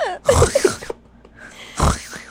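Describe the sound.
A voice imitates a demonic snore played backwards: two harsh, raspy bursts with warbling, swooping pitch, separated by a short quiet pause, with no other talk.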